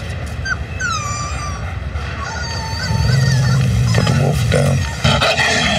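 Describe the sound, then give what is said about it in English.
High, sweeping whines and yips from a wolf pup ring out, then a deep, steady growl from its protective mother wolf rumbles underneath for a couple of seconds. No one speaks. “He's a wolf. And that is its incredibly protective mother.”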